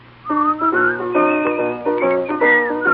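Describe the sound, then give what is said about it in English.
A melody is whistled in bright, steady notes over a backing of sustained harmonic tones, moving through several pitch steps, clear and fairly loud for about three seconds. “Maybe they'll whistle and you will hear.”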